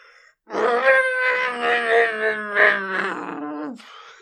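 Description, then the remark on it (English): A person imitates a T-Rex roar with one long, loud, wavering groan held for about three seconds, then cuts off abruptly. “You tried a T-Rex.”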